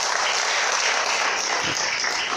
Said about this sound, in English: Let's give the Lord a good round of applause.